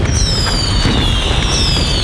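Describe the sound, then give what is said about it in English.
Loud, continuous crackling roar of fireworks going off from a volcano full of fireworks, with a deep rumbling boom underneath, while shrill whistles sweep downward in pitch twice over about two seconds; no voices. “Oh, volcano full of fireworks.”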